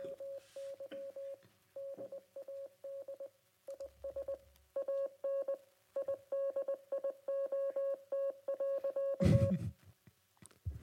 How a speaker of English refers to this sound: And this is a deep cut joke. Oh gosh. So if you know Morse code, maybe you'll laugh at this.